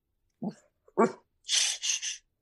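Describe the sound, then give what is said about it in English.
A big dog gives two deep, short barks, followed by three harsh, breathy huffing bursts in quick succession. “It's my big dog.”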